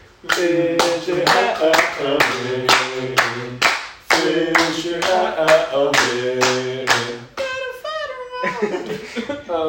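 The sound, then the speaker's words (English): Steady, rhythmic hand claps keep a quick even beat while voices chant a repeated phrase over them; the clapping is loud, then breaks into a few looser claps near the end. “I think my claps are going to go along with that beat.”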